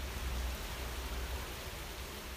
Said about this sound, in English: She goes by the name Flurry, and she sent the sound of rain in Nashville.